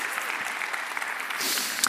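An audience applauds the volunteers, clapping steadily in a dense, even patter of many hands at a constant loudness throughout, with no voices standing out.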